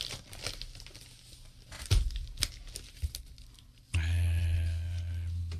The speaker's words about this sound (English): Opening packages on the radio. That's what all the good paranormal shows do.